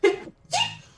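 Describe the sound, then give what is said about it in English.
A single sneeze in two bursts, a short voiced intake followed by a sharp, breathy blast, loud and isolated with no talking. “Bless you, my friend.”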